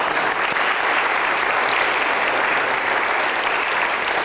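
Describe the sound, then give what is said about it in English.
Steady, dense applause from an audience clapping for having paid off the remaining debt of an education building, many hands clapping at once in a continuous crackling wash that stays loud and even throughout, with no voices rising above it. “You can clap for that.”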